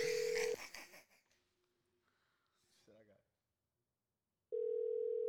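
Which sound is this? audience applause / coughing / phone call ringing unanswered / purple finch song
phone call ringing unanswered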